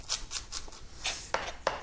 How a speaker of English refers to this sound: The herb I'm going to use for this is fresh coriander, which again is going to add a sort of lovely fragrant, fresh, sort of orangey, lemony flavour to the chicken. I'm going to chop that quite quickly and fairly finely.